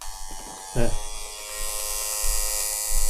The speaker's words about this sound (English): That's a car engine. There you go, it's skipped. Brakes. It's gone down a gear.